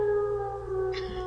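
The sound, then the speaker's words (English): An air raid siren wails in a sustained, steady tone with rich harmonics, moderately loud and unbroken, with no voices over it. “I think this is the siren they play when the bombs are about to drop.”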